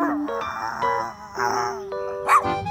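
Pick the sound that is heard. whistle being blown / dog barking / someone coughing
dog barking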